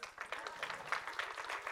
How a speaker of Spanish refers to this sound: ¡Wow! Den un aplauso.